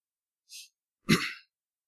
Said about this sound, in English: I'm coughing today. You've got to forgive me and love me.